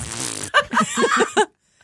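A loud, sputtering fart sound effect played from a soundboard button plays alone, starting with a broad noisy blast and breaking into a quick series of wet, bubbly pulses before cutting off.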